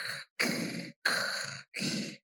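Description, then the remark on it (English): A person imitates heavy breathing: four loud, raspy breaths in a steady in-and-out rhythm, with short silences between them and no talking. “Well, that heavy breathing.”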